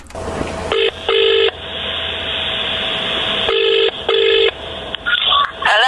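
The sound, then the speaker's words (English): A telephone ringing tone heard down the line, two double rings (ring-ring, pause, ring-ring) with a steady hiss between, followed by a brief burst of other tones as the call connects. “without any messing about, mate, just listen to this phone call.”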